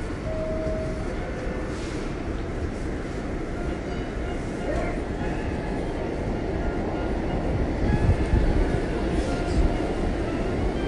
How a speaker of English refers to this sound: After the 2 minutes is over, this Brooklyn bound 4 train will proceed to the next stop, Fulton Street.